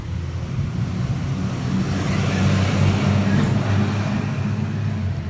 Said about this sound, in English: Oops, sorry, there's a bus coming.